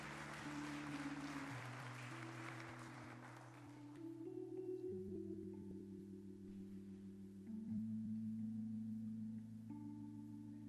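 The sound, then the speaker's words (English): An audience claps in praise of Jesus in a dense burst of applause over sustained organ chords; the clapping fades after about four seconds while the held keyboard notes keep shifting underneath. “Give Jesus a hand. Clap for praise.”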